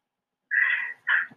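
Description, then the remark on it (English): A cat growls in two strained, rising bursts, a longer one followed by a shorter one after a brief pause, with no talking. “Cat. Stop growling at me”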